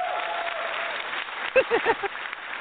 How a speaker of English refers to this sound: Let me give you a little round of applause.